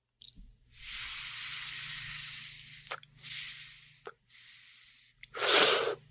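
Someone takes a hit of cannabis smoke: a long, steady airy inhale, two shorter drawn breaths, then a loud, forceful exhale to finish, with no talking.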